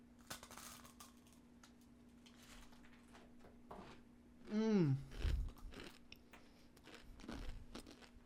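Crisp, crackly crunches of a chip being bitten and chewed, with irregular snaps throughout and a brief descending hum of a voice partway through. A low steady hum sits underneath.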